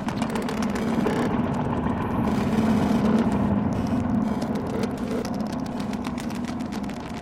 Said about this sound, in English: And then you're hearing the CV effects of that on all the four different bands while the VCF3DB is feedbacking. So it's a very interesting texture.